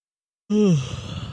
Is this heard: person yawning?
yes